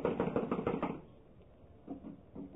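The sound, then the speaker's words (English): A quick run of firm, evenly spaced knocks on a door locked from the inside, followed by a pause and a couple of faint, muffled thumps in the quiet. “It's locked from the inside. Well, someone is definitely in there. I'm going to knock.”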